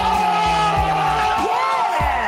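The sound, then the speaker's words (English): A group of men, students in a Bowie State program at Jessup Correctional Institute, cheer and shout together after finishing their first semester, a loud, sustained burst of overlapping voices with rising whoops and yells. “That was them cheering when they finished the semester.”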